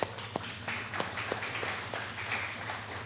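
An audience claps for a person invited up to help the speaker, about three seconds of a soft patter of many overlapping hand claps over a low steady hum, with no voices.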